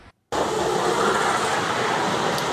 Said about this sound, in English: And there go the snow plows working hard up in the North Bay. Caltrans crews in Napa County cleared snow along 29 in the hills above Calistoga.